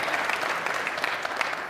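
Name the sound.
audience applauding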